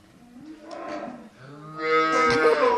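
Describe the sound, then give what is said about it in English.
A newborn heifer calf, born that morning at 5 o'clock, moos twice in a calf shed on a farm: a wavering, mid-pitched bawl, then a longer, louder, strained call that rises and holds, with no voices. “Lovely Charlie heifer calf.”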